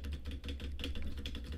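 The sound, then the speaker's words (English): Rapid, continuous butterfly clicking on a computer mouse, a dense flurry of small sharp clicks with no pauses and no voices. “Oh, no, I'm butterfly clicking.”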